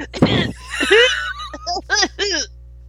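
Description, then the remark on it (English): A voice fakes a laugh that blends a sneeze and a cough: a harsh, noisy burst followed by a string of squeaky, high-pitched, warbling yelps in short rhythmic spurts. “You pretend you're sneezing and coughing at the same time, and it comes out like.”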